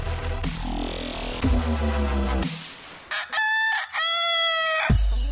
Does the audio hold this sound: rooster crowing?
yes